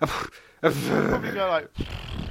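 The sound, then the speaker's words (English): A person vocally imitates a reindeer with a rough, guttural grunting roar, a short burst followed by a longer growling sound, with brief breaths between. “What noise do deer make? Not horse noises, because they're reindeer. What do they make, though? They go like...”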